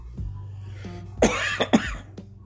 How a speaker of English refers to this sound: Don't worry, I've had this cough for 6 months. It's probably something else besides COVID. Doesn't mean that it's not bad, but it's probably not COVID.